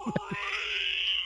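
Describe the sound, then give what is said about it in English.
A zombie scream sound effect, played by accident: a few quick guttural grunts give way to a strained, high, sustained wailing cry that holds steady for about a second. “according to this, it's a zombie scream, which I just bumped.”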